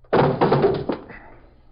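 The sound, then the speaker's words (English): Police officers kick a door open: a heavy bang followed by two more forceful thuds and a rattling, fading reverberation. No one speaks. “Kick the door open.”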